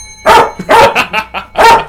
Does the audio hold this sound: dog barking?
yes